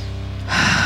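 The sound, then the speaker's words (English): A deep, airy breath rushes in about halfway through, loud and breathy after a moment of quiet low hum, during a guided deep-breathing exercise. No one speaks. “Just some nice deep breathing.”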